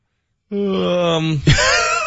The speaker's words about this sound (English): Does the yawn say something more than we think?